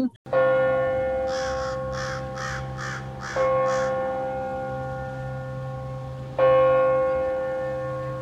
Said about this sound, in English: So while you've been talking, the big giant crow had showed up and it's sitting about 20 feet away on top of a place that's I feed it. And it's just looking, it's listening.